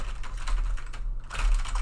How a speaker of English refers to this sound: Oh, stop the keyboard sounds. But honestly, I'm, like, really trying to focus in and, like, you know, but...